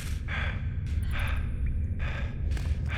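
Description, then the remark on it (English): Hard, heavy breathing in a room, with several loud breaths in quick succession over a steady low rumble, and no talking. “For a few moments, the only sounds in the room are the sounds of hard breathing.”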